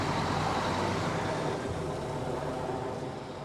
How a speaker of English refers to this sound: We filed back onto the bus without saying much of anything. The engine started, and the bus's rubber tires spit out clouds of dust behind them.